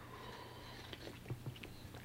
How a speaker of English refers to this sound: Now, I have a hiccup because I was drinking coffee, which I'm going to have another sip. Hold on.